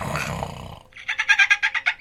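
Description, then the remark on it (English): A person imitates an animal roar: a breathy, rasping rush of air that turns into a rolling, rapidly pulsing growl for about a second, with no other sounds. “I know he does like a roar, like rawr.”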